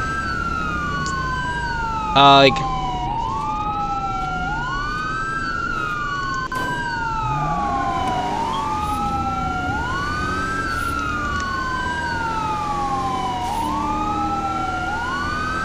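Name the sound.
emergency vehicle siren wailing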